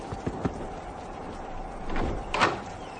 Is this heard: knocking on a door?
yes